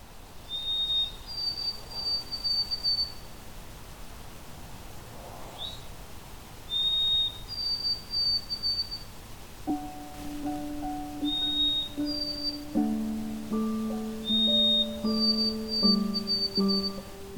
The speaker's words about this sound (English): The white-throated sparrow is known well for its loud, melodic, whistling song. The song is remembered easily with the mnemonic, "Oh, sweet Canada, Canada," or "Old Sam Peabody, Peabody."